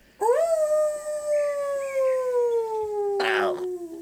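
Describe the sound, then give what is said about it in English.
A wolf in a forest howls once in a long, drawn-out cry that swoops up and then slowly sinks in pitch, loud, with a short rough burst of noise near the end. “So you done brought me out to the forest and there's a wolf.”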